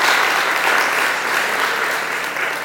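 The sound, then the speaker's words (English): An audience claps together as a clap offering to God for the written word, in sustained, dense applause, a steady wash of many hands that stays loud and even from start to finish with no voices standing out. “Let's give God a clap offering for the written word.”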